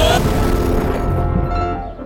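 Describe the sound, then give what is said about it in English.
Cars blow up on hearing jazz, exploding in a loud, crackling burst that rolls into a dense, sustained rumble and slowly fades over about two seconds. “Oh, that jazz blew up my cars!”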